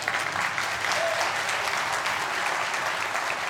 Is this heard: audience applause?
yes